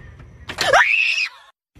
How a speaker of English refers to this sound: And this little fucking frog jumps at me and I'm screaming just like that.